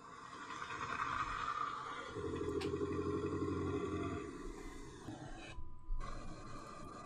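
A raspy, breathy hiss heard by a hiker on a path gives way to a deep, rough, guttural growl lasting about two seconds, then fades back into a steady, noisy hiss. No one speaks.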